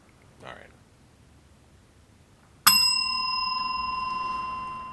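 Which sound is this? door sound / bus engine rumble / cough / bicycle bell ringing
bicycle bell ringing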